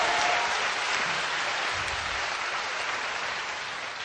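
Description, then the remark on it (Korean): An audience in Korea applauds to give a big hand to Jesus, in a steady, dense wash of clapping that holds loud and even throughout, easing off only slightly toward the end, with no voices speaking over it. “Let's give a big hand to Jesus.”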